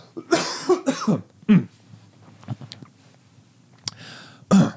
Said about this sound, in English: Excuse me, I'm about to cough.